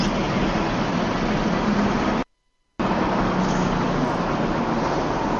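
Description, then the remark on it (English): A steady, loud roar of heavy vehicle noise, like a truck rumbling along a road, drops out abruptly for about half a second and then resumes at the same level. “Someone driving a truck?”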